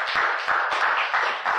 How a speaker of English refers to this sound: Hey! Can we clap for Jesus? Come on! Glory to God!